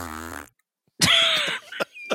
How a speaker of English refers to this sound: You know what? Fart.